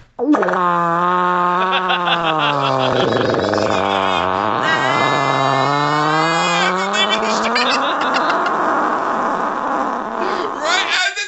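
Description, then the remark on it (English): A voice imitates a loud Honda Civic engine revving: a continuous buzzy drone dips low as if nearly stalling, sputters, then climbs back up in a strong throttle before trailing off. “It sounds like the engine almost died, and he had to re-throttle.”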